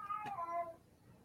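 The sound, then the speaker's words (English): A single meow from a female cat, clear, with a rising then falling harmonic tone that lasts under a second before trailing off into quiet. “The cat agrees.”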